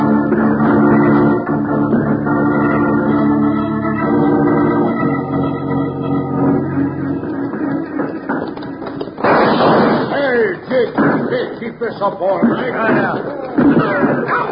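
Gunshots in a gunfight with six-shooters in a Wild Bill Hickok western: a scatter of sharp, loud cracks bursting out over a dense, sustained background, growing thicker and more chaotic in the second half.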